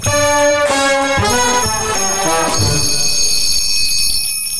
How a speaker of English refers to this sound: Annoying, isn't it? Yeah, but that's annoying to listen to. Christmas bells, because this is the Christmas episode.